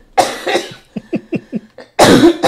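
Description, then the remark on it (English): A person with the flu coughs harshly twice, followed by a quick string of short, rhythmic throat hacks, then one more heavy, raspy cough to finish. “Ooh, I need a cough, bro.”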